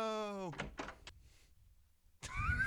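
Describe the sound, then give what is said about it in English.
A door opening sound effect: a descending tonal whine, a few quick swishing bursts, a short lull, then a louder mechanical rush with a rising whine, clear. “The door opening always gets me.”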